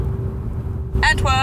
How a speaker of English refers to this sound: We are in a car going to...